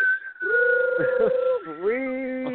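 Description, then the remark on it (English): A person whistles a sustained, wind-like tone, the pitch holding steady, then dipping and sliding back up over a couple of seconds, fairly loud and alone. “If the wind picks up too much, you can hear like a whistle through that nut.”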